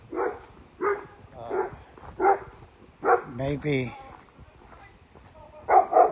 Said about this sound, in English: Maybe the barking dog is got your interest picked up.